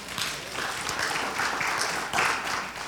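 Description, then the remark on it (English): A crowd applauds steadily for about three seconds to encourage a man who is out for the first time in a while, a dense wash of many hands clapping at moderate loudness, swelling briefly near the end with no voices over it. “That wasn't a very hearty applause, but I applaud you, and I'm glad you're here.”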